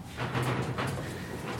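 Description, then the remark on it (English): Wind rushes steadily around a shed on a windy day, a low, drawn-out creak groaning through it early on, with a couple of soft knocks rising out of the gusty noise. “It might not be used to the wind and the banging and the roof, but...”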